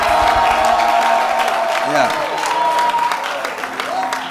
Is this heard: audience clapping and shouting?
yes